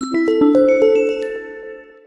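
A bright bell ding used as a segment sound effect, made of a quick rising run of chime notes struck one after another and ringing together, then slowly fading out over about two seconds with no voices.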